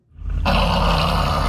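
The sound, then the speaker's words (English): A dog named Falky growls in one loud, continuous, throaty rumble while attempting to say "I love you, Mom"; it swells up within the first half second and holds steady to the end, with no talking. “He's growling at his mommy while attempting to say, I love you, Mom.”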